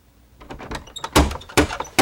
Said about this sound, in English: Just then, Max heard a knock on his hotel room door.